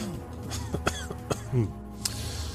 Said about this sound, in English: Oh, blimey. This cough just won't leave me alone. Is it still lingering from COVID? Yeah, it's mostly gone.